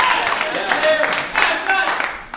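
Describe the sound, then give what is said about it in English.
A live crowd breaks into a steady round of applause, dense overlapping claps with a few voices and whoops mixed in throughout. “Round of applause for our spare white guy”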